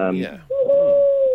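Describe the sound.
A single breathy, hollow owl-like hoot made by clasping the hands together with a little shake and blowing across the top, starting softly and swelling into a steady, pure-toned note held for nearly a second, fairly loud after a brief voiced lead-in.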